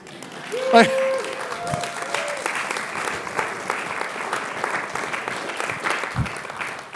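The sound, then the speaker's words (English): A church audience breaks into steady applause at the end of a sermon, many hands clapping in a dense, continuous patter that holds at an even level for several seconds, with a few brief voiced tones early on. “You're just clapping because I'm done.”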